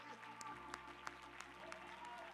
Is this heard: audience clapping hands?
yes